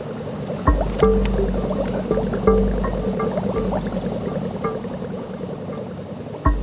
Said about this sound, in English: And the faint air bubbles are actually giving oxygen to the plants that are in our hydroponic system.